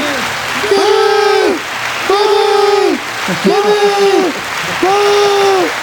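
Crowd cheering with clapping noise underneath, coming in four loud, evenly spaced bursts of rising-and-falling whoops, each about a second long, steady in volume.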